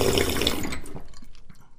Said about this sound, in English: Slurping. I wouldn't say it's a fear. It does slightly irritate me, but probably not as much as I think most people do get frustrated by.